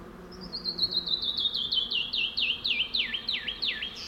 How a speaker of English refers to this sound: What a spacious soundscape, canyon wren and bee buzz. Truly a Chisos Mountain sound delight.